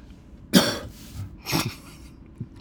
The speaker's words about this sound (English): That is as fake a cough as I ever heard in my life.